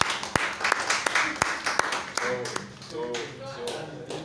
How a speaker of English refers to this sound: So you are clapping because I closed early. No. The delivery. The delivery. Fantastic.